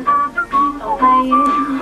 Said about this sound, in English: we recorded him whistling